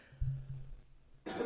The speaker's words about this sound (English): Oh, no. I'm clearing my throat. I don't got the Rona. It's okay. At least not that I know of.